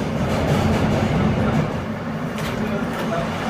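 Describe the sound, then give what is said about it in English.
A Manhattan-bound F subway train in New York rumbles steadily along the tracks between Forest Hills-71st Avenue and Jackson Heights-Roosevelt Avenue, a dense, loud low roar with faint rattling, with no one speaking. “This is a Manhattan-bound F train via the E line.”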